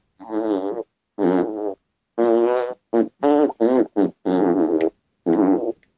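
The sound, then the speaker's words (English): A series of about nine buzzy fart sounds at shifting pitches, spaced in a rhythmic pattern as an attempt to play a song's tune, loud with short silent gaps between them. “It's insane that you can change okay. The tones of the farts.”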